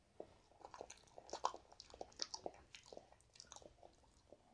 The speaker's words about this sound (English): As I'm munching on this banana.